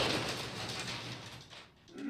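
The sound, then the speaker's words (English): A garage door rolls along with a steady mechanical grinding rattle over a low motor hum, dipping briefly near the end before the noise picks up again. “That's the sounds of the garage right there, door.”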